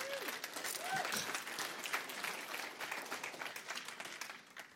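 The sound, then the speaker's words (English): A church audience claps steadily for the worship musicians, many hands blending into a dense, sustained patter that holds for several seconds, with a brief vocal whoop rising out of it early on. “Would y'all give them a hand clap, please?”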